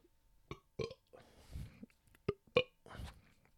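A fairly quiet burp with several short clicky gulps and low rumbling belches spread across a few seconds, no talking.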